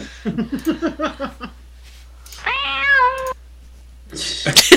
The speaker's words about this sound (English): Wait. Is that the blogging cat?